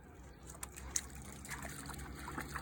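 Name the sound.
river water trickling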